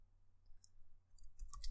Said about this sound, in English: Are you typing still? Okay, I see how it is.